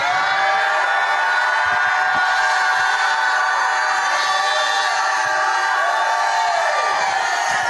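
A large crowd shouts and cheers continuously, a dense roar of many voices with whoops and high cries rising above it, loud and sustained throughout.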